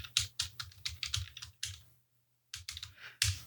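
Rapid computer keyboard typing on a thesis paper, a fast run of crisp clicking keystrokes that pauses briefly for about half a second, then resumes with a few more quick taps.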